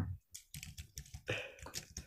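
Rapid typing on a computer keyboard for a quick Google search on mangosteen powder, a quick run of sharp, uneven clicks and taps over about two seconds with no voices.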